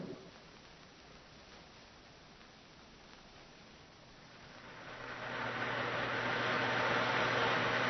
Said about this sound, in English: Because there's no use going on like this. The rain, I can't even see the road.